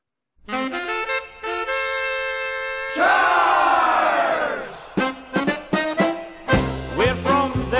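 A recorded polka about the Pittsburgh Steelers football team plays loudly, opening on sustained, bright reedy chords that swell into a full blast, then breaking into a bouncy, punchy rhythm of short repeated hits.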